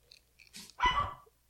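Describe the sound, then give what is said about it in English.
A dog gives one loud, sharp bark, preceded by a brief softer huff, with quiet background before and after and no talking. “I love your dogs are barking and our cat's eating garbage.”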